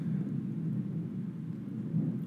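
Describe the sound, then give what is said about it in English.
A deep, steady rumble of a big airplane flying over a house, a continuous low drone that holds loud and even for the whole moment, with no voices over it. “There's a big old plane driving over my house.”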